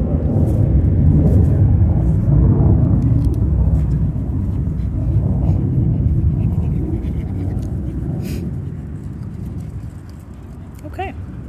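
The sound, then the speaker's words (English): A loud, steady low roar of an airplane passing overhead fills the whole stretch, broad and rumbling, easing off slightly toward the end. “Okay, let's give a moment to the airplane.”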